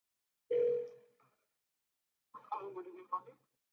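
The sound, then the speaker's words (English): A single steady telephone ring tone sounds on a call to check on a food order, and fades out. After a short silence, a brief, muffled voice answers on the line. “I'm going to record this phone conversation.”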